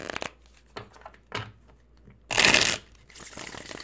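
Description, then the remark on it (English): Tarot cards being shuffled: a few soft riffling flicks, then a loud, dense burst of cards rushing together, followed by quieter continuous shuffling. No one speaks. “Here's your ASMR, my friends. Let's shuffle.”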